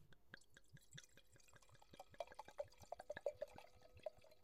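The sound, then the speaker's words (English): Rosé wine glugs and splashes into a glass from an already-opened bottle, a quick run of bubbly pours with rising ringing tones as the glass fills, no voices present. “For SMR sakes, it's already opened, but we are going to pour it up.”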